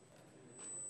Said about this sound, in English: All right, y'all heard that? Okay. Did everybody hear that little beep?